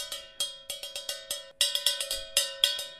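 A pencil printed with 'coolest teacher ever' whacking on a water bottle in a quick, uneven series of about fifteen sharp metallic taps, each ringing with a steady resonant tone that sustains between hits. No one speaks.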